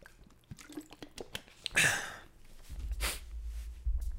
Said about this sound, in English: Sorry, a lot of coughing here. Just going to chug my aqua for a second.